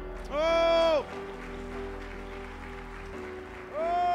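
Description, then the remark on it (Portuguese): An audience at a Portuguese-language church service applauds to give glory to God in a steady wash of clapping, with loud sustained tonal swells, like voices or a keyboard, rising over it at the start and again at the end. “Se você crer, dê um glória a Ele, aplaudo.”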